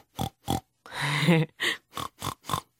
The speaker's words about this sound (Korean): 꿀꿀꿀꿀, 돼지예요. 돼지는 우리 친구들 잘 알고 있죠? 영어로 pig, pig예요.